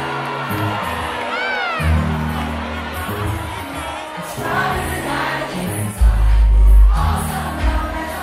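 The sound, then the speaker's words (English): A crowd at a 90s party at the 930 Club in Washington, D.C. erupts in loud cheers and whoops over thumping music as a DJ drops a song, with high excited shouts rising above the din and the bass swelling heavier near the end. “And he knows what kind of response he'll get when he drops the song.”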